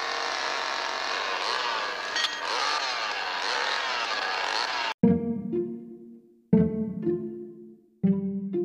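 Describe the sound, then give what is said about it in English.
A chainsaw roars steadily for several seconds, then cuts out and revs in three sharp bursts, each one surging loudly and trailing off, with no voices. “It all started with the moist chuckle of a chainsaw.”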